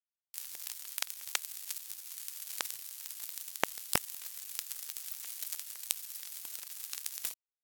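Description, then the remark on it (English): A steady, dense sizzling hiss like static or frying, made from a week of sonified bot web traffic data from April 2018, with scattered sharp crackles and pops running through it for about seven seconds before cutting off abruptly. “Bot sizzle.”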